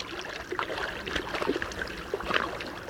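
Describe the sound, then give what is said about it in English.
Irregular splashing and sloshing of water, with bursts of churning as three moose, a large female and two young, move through the shallow water of a Wasatch Mountain lake in Utah on a cool July morning, no voices present. “On a cool July morning, three moose frolic in the waters of a Wasatch Mountain lake in Utah.”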